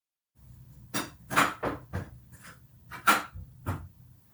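A female puppy that has found a squeaky toy moves around, making a handful of sharp knocks and scuffling bumps at irregular intervals over a low, steady background hum, with no one talking.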